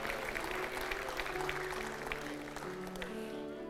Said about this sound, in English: Come on, church, let's give them an applause as they come. People are still coming right now. Come on, put your hands together.